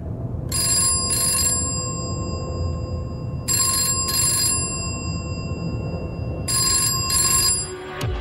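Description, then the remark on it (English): A landline telephone rings in three repeated double bursts, each pair of bright trills followed by a short pause, fairly loud over a steady low background hum with no talking. “the scene it sets has given many Aussies a reminder of what life used to be like, with landline phones that have that particular ringtone.”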